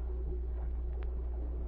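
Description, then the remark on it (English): A steady, deep engine rumble from a swift gray destroyer leaving a harbor and moving through water, droning at an even level throughout with no voices, only a faint wash of higher noise above the low hum. “As it left the harbor, a swift gray destroyer followed.”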